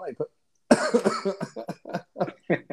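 A loud, harsh cough bursts right up against the microphone, followed by a string of shorter, choppy vocal bursts and sputters, from a man with something in his throat from allergies.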